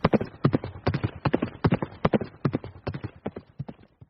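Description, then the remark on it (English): Horse hooves clip-clop on a hard road in a steady, brisk rhythm of sharp knocks, fairly loud, continuing throughout with no voices, as Hendricks rides his horse through Indiana's back roads to his hometown. “We flash back to Hendricks, riding on his horse through Indiana's back roads to get to his hometown.”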